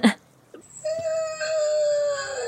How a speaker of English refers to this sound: Is that an actual animal sound? That's a bobcat. Sounds like a bird.